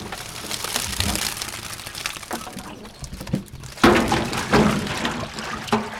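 A fyke net is hauled from a lake onto the flat bow of a boat beside a DNR buoy during a panfish netting survey, with sloshing and dripping, rough scraping and creaking, and a few sharp thumps and knocks against the hull.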